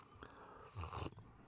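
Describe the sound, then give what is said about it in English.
A slurp of hot tea, a short wet sucking noise with a brief swallow, heard alone and fairly quiet overall. “Sorry for slurping in your ear.”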